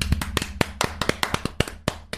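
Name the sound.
hand clapping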